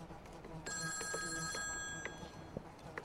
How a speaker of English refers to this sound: The phone keeps ringing. Someone should answer. Someone pick it up.